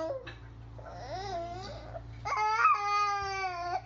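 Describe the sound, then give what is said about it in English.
A baby boy yells and shrieks: a brief cry, then wavering whiny vocalizing, then a loud, sustained, high-pitched yell lasting over a second, with a steady low hum underneath. “More often than not, though, he shrieks or makes unusual sounds like gack. This is him yelling.”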